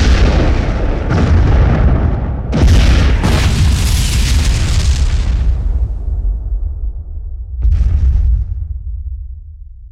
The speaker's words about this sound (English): A barrage of fire assaulted the small cruiser, Clyde gunned the sputtering engine, and they headed for the last bastion of safety they could reach.